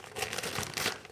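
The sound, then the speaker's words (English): Continuous crinkling and tearing of stiff brown paper as a package tied up with string is unwrapped, a dense rustle with a few sharper crunchy bursts, heard alone with no talking. “Oh, he's got a brown paper package tied up with string.”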